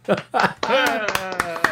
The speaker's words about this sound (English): All right. Studio clap.